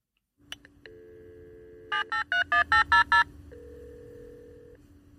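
A phone line clicks open to a dial tone, six quick keypad beeps are punched in, then a steady electronic ringing tone follows. Clear, with no voices.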